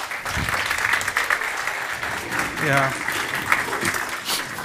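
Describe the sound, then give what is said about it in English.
Sustained applause from a church audience, a dense wash of many hands clapping, steady for several seconds with a brief voice calling out over it. “Can we give these folks a hand clap?”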